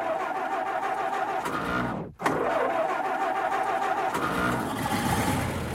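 The engine of a heavy drilling machine, a steam and nuclear hybrid, starts up and runs with a loud, steady roar; it drops out briefly with a falling sweep, then catches again and keeps churning. No voices.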